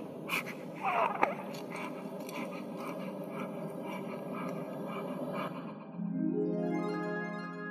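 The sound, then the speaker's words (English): Soft, snuffly breathing of a newborn baby, a steady run of quiet wheezy breaths with a brief tiny squeak early on and a faint rising tone toward the end. “Now we've got this lovely, beautiful baby. You can hear her breathing.”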